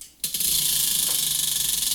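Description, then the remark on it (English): A game spinner is flicked and whirs with a rapid, steady stream of bright plastic clicks that carries on evenly after a sudden start, with no voices. “Now I have to spin, right? Yes. Now you have to spin and draw.”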